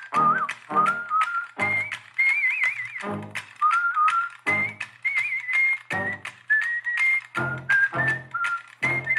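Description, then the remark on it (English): Someone whistles a wandering melody in clear, sustained notes, accompanied by regular sharp tapping thumps that keep a steady beat throughout; no one speaks. “Hey, maybe my whistling's not so bad after all, huh? I'll let you hear the song. Your whistling probably a little better.”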